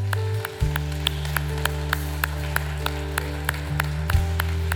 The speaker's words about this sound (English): Come on, let's clap, church family.